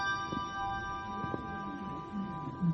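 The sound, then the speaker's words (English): A handbell rung with the gyro technique, rotated to alter its sound waves, rings with a steady, sustained shimmering tone and bright overtones, accompanied by a few soft low thumps and handling rustles. “Sometimes you want to alter the sound waves a little bit by rotating the bell, and this is where a thing of physics comes in again that I don't understand.”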